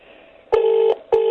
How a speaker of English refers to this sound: No, the phone's ringing. I can hear it.